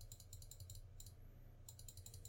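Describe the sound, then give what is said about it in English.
Rapid keyboard typing and mouse clicks in bursts, a flurry of keystrokes, a short pause, then more quick tapping, fairly quiet over a low steady hum. “Excuse my clicking around.”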